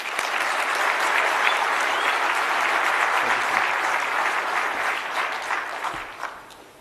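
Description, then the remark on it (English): A round of applause from a crowd welcoming a poet to the stage, dense steady clapping that holds loud for about five seconds before tapering off toward the end. “Let's give us all a round of applause as it comes to stage.”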